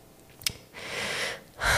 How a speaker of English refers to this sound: This is what you don't see, guys, my heavy breathing.